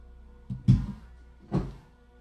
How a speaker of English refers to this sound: I want to close the door.